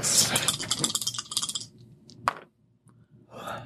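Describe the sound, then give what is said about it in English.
Dice are dropped and clatter and tumble across a hard table in a quick, dense rattle lasting over a second, followed by a single sharp click and a short, softer rattle near the end. “Drop dice.”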